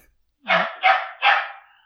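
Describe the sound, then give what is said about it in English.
Three sharp dog barks in quick succession, evenly spaced and fairly loud, with no one talking over them. “My daughter's dog.”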